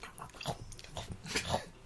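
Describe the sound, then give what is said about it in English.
Sloppy, noisy chewing and biting, a quick irregular run of wet, snuffling mouth sounds lasting a couple of seconds, with no talking. “No, chew.”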